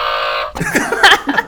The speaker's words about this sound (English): What happened to the buzzer? Oh, yeah. Do we have that sound?